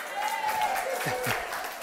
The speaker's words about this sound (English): It's not often I get a clap in a sermon, but I got one for donuts.